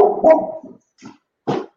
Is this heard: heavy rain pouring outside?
no